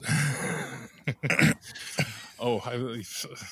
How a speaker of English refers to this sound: excuse you, sir. Sorry, it was just a cough. I apologize.